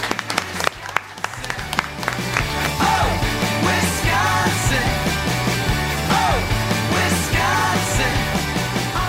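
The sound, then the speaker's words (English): An audience breaks into applause, a dense patter of clapping that is soon joined and overtaken by music with a stepping bass line and a wavering melody. “And, yeah, another round of applause for these two.”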